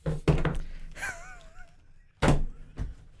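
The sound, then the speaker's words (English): Several solid thunks of a phone and headphones being set down on a hard surface, with a brief wavering squeak between the knocks and no talking. “The sound when you put your headphones and your phone down was like Beastmaster.”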